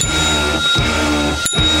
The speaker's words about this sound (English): I wish people could see how precisely you ring the bell. You could tell you're a true percussionist.